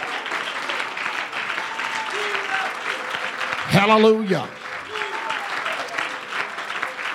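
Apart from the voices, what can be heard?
audience clapping in praise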